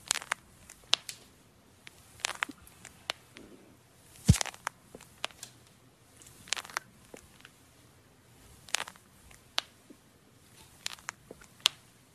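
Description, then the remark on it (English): Knee joints crunching and clicking as a person stands up: a scattered series of sharp, dry pops and crackles at an uneven pace, some landing in quick clusters, with no voices. “Yeah, there's like the crunch and then the pop, and the pop is when I stand up with my knees clicking.”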